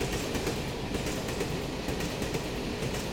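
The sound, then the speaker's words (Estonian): A train to Moscow rolls steadily along the rails with a continuous low rumble, and a faint rhythmic clickety-clack of wheels runs through it. The sound is even, with no voices. “Ta sõitis rongiga Moskvasse nii, et ei teatanud sellest isegi oma vanematele.”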